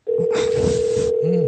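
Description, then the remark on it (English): A telephone dial tone from a regular landline phone on a live radio show drones loudly on one steady mid pitch for the whole moment, unbroken, while a burst of hissy noise and faint muffled sounds pass underneath. “He's got a dial.”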